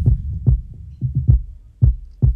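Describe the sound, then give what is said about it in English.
Deep, punchy kick drum thumps repeat in an uneven, pulsing groove, each hit trailing off into a soft echo and reverberant low rumble. No voices, just the kicks. “If you can notice there, that's with the kick and the kick effects present.”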